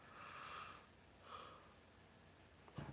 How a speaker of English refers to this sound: Oh, pardon my yawning.